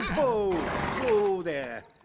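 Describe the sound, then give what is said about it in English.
A horse pulling a carriage neighs as it pulls up, a loud whinny with two quavering, falling cries in quick succession, then it fades off. “We had pulled up in front of a large villa, which stood within its own grounds.”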